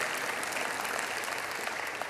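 A steady wash of audience applause, many hands clapping at once in a dense, even roar with no voices or breaks in the sound.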